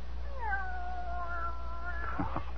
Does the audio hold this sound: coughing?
no